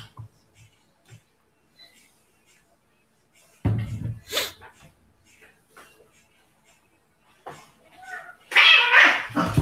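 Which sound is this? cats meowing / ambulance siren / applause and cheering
cats meowing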